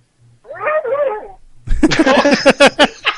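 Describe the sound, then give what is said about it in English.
A dog gives a wavering, high-pitched yelping whine, fairly clear, after someone stepped on her paw, then a louder, busier burst of overlapping cries and voices follows right after. “The dog did. Sophie is trying. She literally just walked in the room and did that.”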